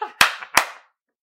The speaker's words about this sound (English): Give yourself a motherfucking hand clap if y'all watching or if y'all listening.